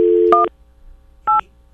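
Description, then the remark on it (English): A steady phone tone cuts off as a keypad beep sounds while a phone number is dialed, followed after a brief pause by a second crisp dual-tone beep. Two key presses, clear, with no talking. “Let me open up my phone.”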